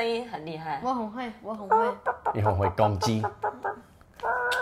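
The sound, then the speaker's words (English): A person imitates a hen with a run of loud, stuttering clucks and warbling cackles, rising into a sustained squawk at the end, with no other sounds around it. “我母鸡声音很厉害。我很会。”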